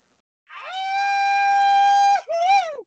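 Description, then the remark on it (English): A person imitates a wolf howl: one long, steady, drawn-out howl, then a brief second howl that rises and falls. Loud, with no talking. “let it howl.”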